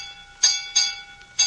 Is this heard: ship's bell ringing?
yes